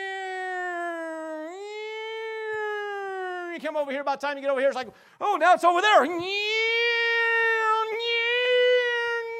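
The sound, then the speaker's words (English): A voice imitates an ambulance siren with long, sustained, high-pitched wailing tones that step and waver in pitch, broken in the middle by quick rising and falling vocal glides. “So here comes the ambulance.”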